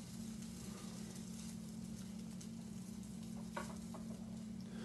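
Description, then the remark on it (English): Thick, heavily seasoned bread slices sizzle steadily in a hot pan, a continuous crackle over a low hum, with a few brief clicks of utensil contact near the end. No one speaks. “You can hear that sizzle. So the pan is hot, ready to go.”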